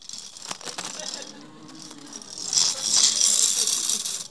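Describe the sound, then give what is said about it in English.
A hand-cranked Swift Whip rotary whisk turning, giving a steady metallic whirring rattle that starts with a few sharp clicks and grows louder and brighter partway through, with soft background voice. “If you're on the podcast, listening on the podcast, that was the smooth action of my Swift Whip. It does not jam. It does not flick cream or egg white all over the planet.”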